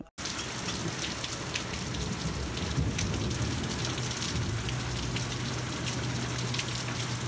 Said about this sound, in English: Jeez, it's raining. Very bloody rainy today. Thundery. And it was hailing before.